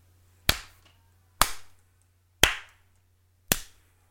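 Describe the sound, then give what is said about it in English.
Four sharp hand slaps land one after another at a slow, even beat, each crisp with a short ringing tail, over a faint steady low hum and no talking. “I need you to snap it and slap it out. What's slap it, clap it, snap it.”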